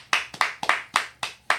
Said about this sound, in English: Let's give her a round of applause, guys.